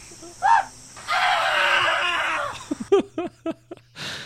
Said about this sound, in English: Yeah, those were goats.